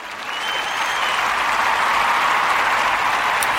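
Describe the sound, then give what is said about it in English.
A loud, steady round of applause, a dense wash of many hands clapping that swells slightly in the first half second and then holds evenly, with no voices. “And for that, I'm going to be giving you a round of applause.”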